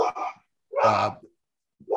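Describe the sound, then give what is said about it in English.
A dog barks in the background in short, sharp bursts, two quick barks followed by a longer, louder one, then another starting at the end, with brief silences between them and no talking. “We got a dog in the background.”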